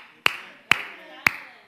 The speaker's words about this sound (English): And sometimes I have to clap for myself when I preach because I know ain't nobody else going to clap their hands.